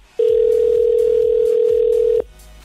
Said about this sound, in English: So let's make this morning's phone call. Come on, pick up. If you don't pick up, we are moving on.